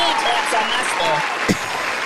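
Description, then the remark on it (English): Steady, crackling applause fills the whole clip at an even loudness, many hands clapping together, with indistinct voices mixed underneath and one sharper hit about halfway through. “I just gave you claps.”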